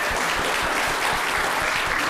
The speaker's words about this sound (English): Round of applause for Professionally Homeless.